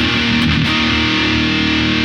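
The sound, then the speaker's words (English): A sustained, thick overdriven electric guitar chord, played through a D&M boost into a drive pedal, rings out in a saturated, fuzzy drive with rich harmonics and a steady, loud tone that holds for about two seconds. “That's a D&M boost into drive.”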